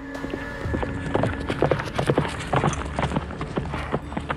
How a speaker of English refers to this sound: In the dark, the sound of hooves approached the carriage.